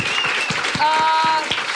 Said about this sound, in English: can we get a big round of applause for Luke McGregor, Dave Thornton, Greg Behrendt